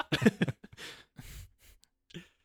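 A quick cluster of hollow knocks on a wooden chair, loud and close to the microphone, followed by softer breathy, scuffing noises and a short pause.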